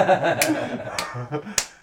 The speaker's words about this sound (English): No one can see you's clapping.